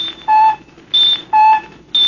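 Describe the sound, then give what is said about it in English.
Electronic ranging beeps from a ship's device alternate between a lower tone and a much higher echo tone, four steady pulses with short gaps, loud and clear over a faint hum. “Echo's bouncing back so fast, almost beating the signal.”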